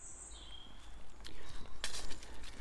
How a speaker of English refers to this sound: Odd mixture of cows, pheasants, wrens and robins. Walking through the village of Neverbury.